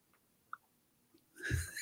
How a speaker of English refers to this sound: It's not an American Loser episode without some paper rustling.